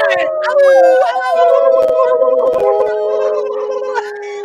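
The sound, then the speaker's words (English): A dog howls in long, wavering, sustained tones for several seconds, fairly loud, with human voices howling along in imitation and overlapping it. “I'm going to make my dog howl.”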